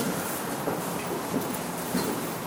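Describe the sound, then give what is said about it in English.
A tram sits at a platform with a steady, dense mechanical rumble and hiss, broken by a few soft, evenly spaced clunks. No one speaks. “Welcome to the tram.”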